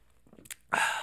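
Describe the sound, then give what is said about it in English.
A quick sip from a can of White Claw hard seltzer: faint slurping and a couple of brief wet clicks, then a loud, breathy, satisfied exhale that trails off. No one speaks. “I'm going to sip my White Claw to at least the Czech Republic doing well.”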